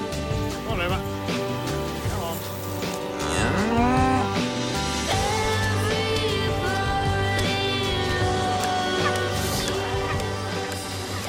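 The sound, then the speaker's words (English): A cow from the documentary film Cow, directed by Andrea Arnold, lets out a long, drawn-out moo that rises and falls in pitch, over a steady layer of tonal background sound. “A documentary that serves as a close-up portrait of the daily lives of two cows.”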